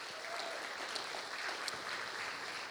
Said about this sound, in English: So the amazingly good news is that in those 12 families, we've already surpassed that goal of raising $300,000. So that is a great report, which some of you should clap really loudly for right now.